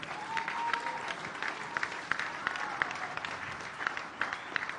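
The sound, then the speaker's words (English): An audience claps hands together, a dense, steady patter of many overlapping claps with a few sharper individual claps standing out, lasting the whole stretch without any talking. “Even though you are clapping hands, it seems you are jealous, but it's okay.”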